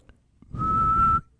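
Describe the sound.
A person gives one sharp, steady whistle lasting about half a second, imitating a referee's whistle, fairly loud, with a breathy rasp beneath the tone and no talking.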